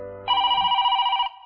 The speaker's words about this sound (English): Please turn off your cell phone. I know it is a swell phone, but it's the phone from hell phone when it rings throughout the show.